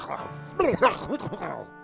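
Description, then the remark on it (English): A voice imitates a man's fit of coughing and sneezing: a quick run of sharp, pitched, throaty bursts, moderately loud, lasting under two seconds with no words. “Then he became overcome with a fit of cough sneezing.”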